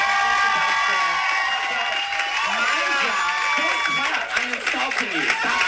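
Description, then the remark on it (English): A dense, loud crowd noise of many overlapping voices with clapping mixed in, the applause growing more sharp and scattered toward the end. “Oh yeah, as I'm insulting her, and the audience is clapping, defending me, she starts clapping.”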